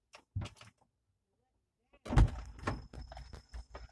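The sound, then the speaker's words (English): A heavy thud of a car door closing as a passenger gets into the car lands midway, followed by shuffling and rustling as someone settles in; muffled voices can be heard briefly before it. “Thought you were fixing to kiss that damn door.”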